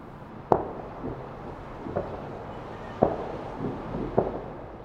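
New Year's fireworks explode in good weather, a handful of sharp cracks and thuds spaced irregularly over a few seconds, with a steady rumbling hiss of more bangs and crowd noise in between.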